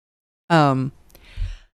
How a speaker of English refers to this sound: Bless you. Sorry.